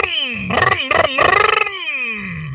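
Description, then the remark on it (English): A voice imitates the muscle car engine revving that a Bose sound system in an electrified muscle car mimics when stepping on the gas: a loud, throaty rumble that climbs in pitch, sputters through a few rapid pulsing bursts, then winds down in a long falling growl. “So the alternative now is that you're gonna have quote unquote muscle cars that are electrified, but they have like a Bose system that mimics muscle car sound.”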